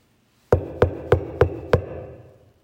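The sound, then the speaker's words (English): Five firm, evenly spaced knocks on a door, fairly loud, each with a short wooden resonance, followed by silence as the sound fades. “And one day, when your parents are gone and everyone else in the family is gone, but you're the only one in the home, you hear a knock at the door.”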